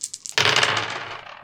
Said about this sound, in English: So now we're going to roll 3d6, and if any of them come up 6, we will have a wilderness encounter.